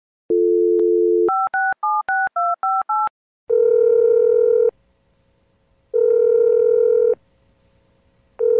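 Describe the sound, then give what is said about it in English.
A steady telephone dial tone gives way to a quick run of about seven keypad tones, followed by long repeating ringback buzzes as the call goes through. No voices are heard. “Uriah finishes his plans with Regina and makes another call.”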